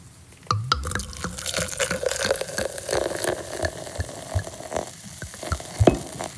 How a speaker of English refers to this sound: Let's pour our drink.